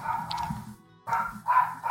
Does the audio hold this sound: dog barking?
yes